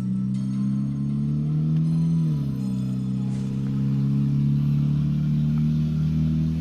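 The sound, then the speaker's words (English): A loud car with a faulty exhaust at a trailer park campground rumbles with a rough, droning exhaust, its low growl holding steady and dipping in pitch briefly as it shifts, with no talking over it. “And I'm sorry, now you gotta deal with this loud ass motherfucking car that needs to fix its fucking exhaust, because I'm sitting here in a trailer park, giant campground.”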